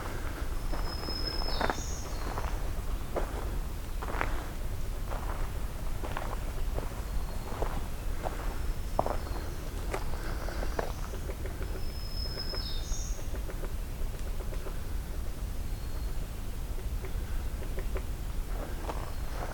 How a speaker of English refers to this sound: Let's see what we hear. There's a woodpecker working on something here.